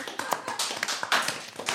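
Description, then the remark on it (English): A smattering of applause: a handful of irregular, sharp hand claps from a few people, overlapping unevenly and fairly quiet, with no voices. “Okay, who we have a smattering of applause.”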